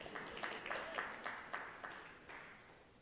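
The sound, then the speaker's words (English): An audience claps in a loose, fairly steady rhythm of about eight or nine soft beats that gradually fade, set against a low wash of crowd noise, with no one speaking. “That call, okay, you can clap.”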